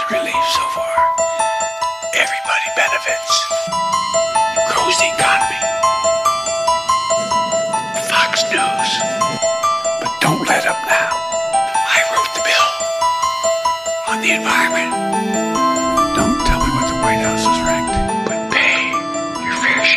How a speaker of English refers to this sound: Because that's, I love the Exorcist too. You know, the bells, the Exorcist bells. I like that a lot.